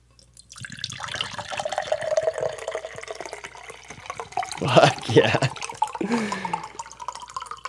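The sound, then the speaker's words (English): A steady, heavy pour of an Arnold Palmer drink splashing into a glass runs for several seconds, its pitch shifting as it fills, with a brief exclamation partway through. “Sounds like you're pouring a lot. Yeah, that's a heavy pour.”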